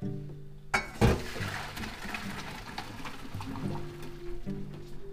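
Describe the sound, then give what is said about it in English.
Hot salted water pours and splashes into a sink as broccoli rabe, boiled for 3 minutes, is drained, with a couple of sharp metallic clunks near the start and a steady rushing, gurgling flow throughout. “Okay, it was cooked for 3 minutes and now we drain.”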